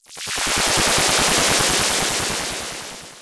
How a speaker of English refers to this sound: Just then, a gunshot rings out and Ashir turns to find Shakaal, who now has a mechanical arm with a gun attached.